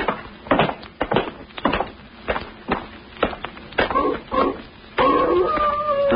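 Steady footsteps crunch along outside a cabin for several seconds, then a sustained, wavering wolf howl rises up and holds, drawn-out and tonal, carrying over the scene to the end.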